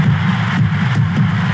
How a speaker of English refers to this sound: This sellout crowd is cheering. Get chills just listening to that.